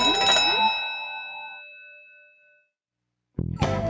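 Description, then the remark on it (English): A school lunch bell sounds with a single bright, loud ding that rings out and slowly fades over a couple of seconds; after a short silence, a person starts speaking. “I'm about to really lose it when the lunch bell rings.”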